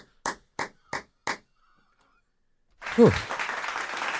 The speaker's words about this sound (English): Stop clapping.